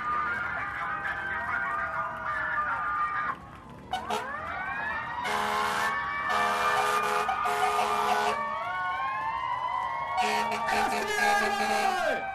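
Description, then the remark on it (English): The siren of a New York police car, a Plymouth Grand Fury (Chrysler K car), wails loudly, its rising and falling tones overlapping with harsh repeated blasts, while a crowd murmurs faintly in the background. “And what's better than this Chrysler K car, this Plymouth Grand Fury police car?”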